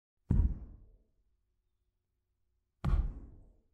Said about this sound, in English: What is that? Sounds like something knocking against the wall. It's coming from upstairs.